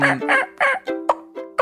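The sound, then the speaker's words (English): A person imitates a turkey mating call, loud: three quick, raspy yips followed by two short, sharp clucks, with brief gaps between notes and no talking. “And this is the way you do a mating call.”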